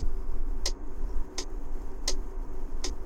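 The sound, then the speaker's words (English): The right-turn indicator of an Iveco truck ticks at a steady, even rhythm, four crisp clicks close to the mic, over a constant low engine rumble inside the cab, as the truck pulls out of a factory into the right-hand lane. “That's the indicator in this truck. I'm driving an Iveco truck.”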